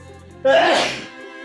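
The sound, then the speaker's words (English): A single loud, sudden sneeze bursts out after a brief voiced intake, then trails off into a breathy, fading exhale. “About to sneeze.”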